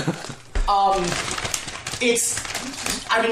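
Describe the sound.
Crinkling and crunching of a potato chip bag as someone eats potato chips, with bursts of dry crackle throughout, while a voice talks over the rustling.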